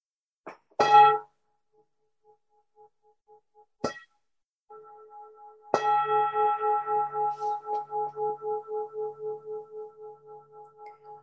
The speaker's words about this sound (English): When I ring the bell, open your eyes.